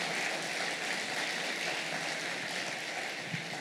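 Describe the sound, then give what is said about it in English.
A round of applause from a crowd for the university's Vice President for Athletics: many hands clapping in a dense, steady wash of sound that holds fairly even throughout, with no voices standing out. “And so let's give him a round of applause.”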